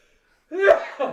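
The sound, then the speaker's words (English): A single sharp sneeze bursts out after a moment of silence, with a voiced intake leading into the explosive release and a brief breathy trailing sound afterward. “I'm going to sneeze.”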